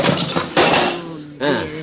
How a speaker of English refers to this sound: Wait till I dump my tools out here and size up the door.